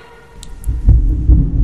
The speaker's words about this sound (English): Wow, that's some good thunder out there, isn't it?